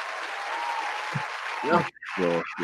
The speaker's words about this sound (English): Like, audio was completely off. So it sounded like a separate track and everything. Yeah, so, I mean, but look at me right now. This is how it would be. I'm sitting there like this. But you're hearing cheers and claps.